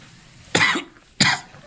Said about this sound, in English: So, yeah, we got a cough.